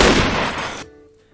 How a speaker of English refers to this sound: and in the end, yeah, gunshot